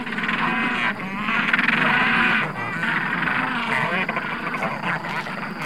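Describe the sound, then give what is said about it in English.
A crowded chorus of penguins squawking, with harsh, bleating calls overlapping one another continuously, fairly loud, and no voices speaking. “I love the sound of penguins squawking.”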